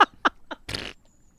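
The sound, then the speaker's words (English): A voice mimics a fart: three quick vocal blips followed by a longer raspy, sputtering buzz, loud and brief, with no talking. “Just farting and working out.”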